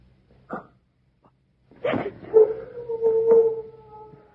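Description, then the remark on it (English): A dog lets out a short yelp, then rises into one long, steady howl that holds its pitch for a couple of seconds, clear with no talking. “It was only one of the dogs.”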